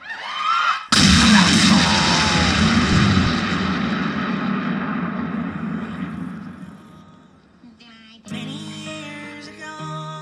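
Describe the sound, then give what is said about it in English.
A rocket blasts off with a sudden, loud roaring burst, then a broad rumbling thrust that slowly fades over several seconds before brighter tonal sounds come in at the end. “All right, let's blast off, everyone.”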